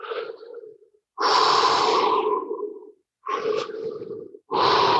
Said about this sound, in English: But keeping your body relaxed, not moving your shoulders, not tensing anywhere, just doing all the work with your lungs, taking full deep breaths. and keeping it at a normal pace, but breathing fully and deeply.